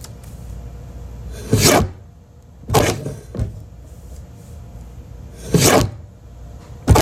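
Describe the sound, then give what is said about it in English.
A large paper cutter blade swings down in three loud, rasping swishes, each about a quarter second long with irregular pauses between, plus a couple of softer scrapes and clicks. “I believe it is the giant paper cutter.”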